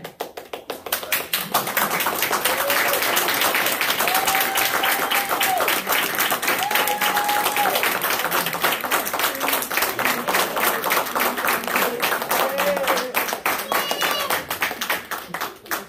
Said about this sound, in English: Let's give the Lord a hand clap of praise for that. Amen.